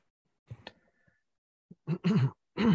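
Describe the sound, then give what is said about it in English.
Someone clears their throat: a soft rasp, then two harsh, gravelly bursts in quick succession, with no speech. “Sorry for clearing my throat there.”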